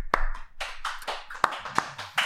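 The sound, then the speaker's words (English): A few sharp hand claps at uneven intervals, given in place of a requested hip hip hooray to mark the end of a show segment, with softer bursts of noise between them and no voices. “So went for the clap, and the hooray was missed.”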